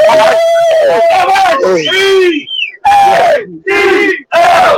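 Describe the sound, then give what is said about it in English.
A busload of Eagles football fans being taken down to Washington cheering and yelling together, loud sustained shouts in bursts with brief gaps, a rowdy crowd chant filling the whole clip. “I got a bus full of Eagles fans that we're taking down to Washington.”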